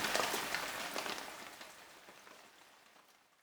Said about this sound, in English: Soon it began to rain. The drops fell faster and faster until they came down by the bucketful.